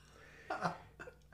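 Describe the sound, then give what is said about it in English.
A person clears their throat: a rough, gravelly burst followed by a shorter second rasp, fairly quiet against a faint background hum. “Let me clear my throat.”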